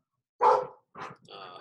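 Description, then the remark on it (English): Dogs bark three times in quick succession, loud, with the last bark drawn out into a whiny, yelping tone. “Could you share maybe as soon as they stop barking?”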